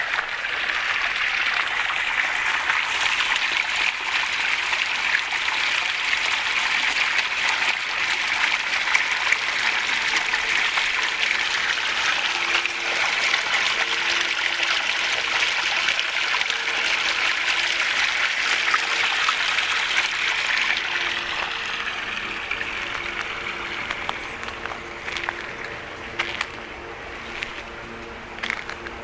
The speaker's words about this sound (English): And here's another one of these little bubbling brooks.